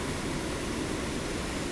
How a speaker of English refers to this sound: All right, let's move back so we don't have this rushing water in the sound.